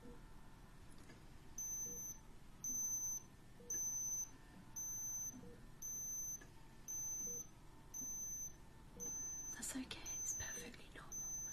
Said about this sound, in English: Machines beeping and bopping here, but they're all just telling us things.